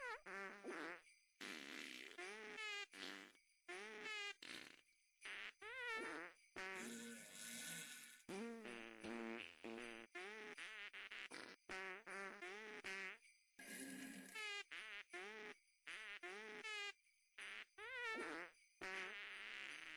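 A loud, steady run of rapid fart noises, each one pitched to pick out the notes of Jingle Bells, carrying the tune from start to finish with short gaps between phrases.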